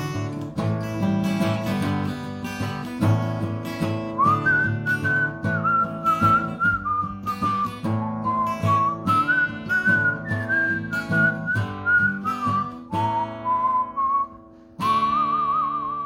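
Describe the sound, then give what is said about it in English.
A person whistles a clear melody over their own steady guitar strumming, the tune sustained and wavering slightly in pitch before a brief pause and a final whistled phrase. “I can't play the mandolin or the piano, so I had to emphasize with guitar and whistling.”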